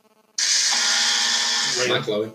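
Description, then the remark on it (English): A loud, harsh electronic buzz from a quiz buzzer pressed by a contestant buzzing in to answer a football quiz question cuts in abruptly and holds steady for about a second and a half before a voice starts speaking as it fades out. “Oh, that's a buzz in for him.”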